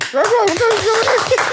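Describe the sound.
Quick, steady hand clapping, several loud claps in a fast rhythm, with a high, drawn-out voice calling over the applause.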